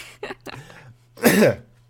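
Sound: coughing and throat clearing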